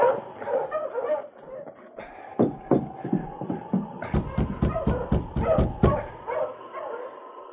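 Several sled dogs bark and yip excitedly as a bearded man halts his dog sled team in front of a cabin in the afternoon, building into a rapid, loud burst of overlapping barks before tapering off, with a faint rising whine underneath.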